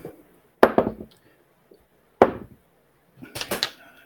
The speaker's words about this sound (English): The heavy thunks of dice, that's not a pleasant sound at all. No, that was just my initiative die. Still not pleasant.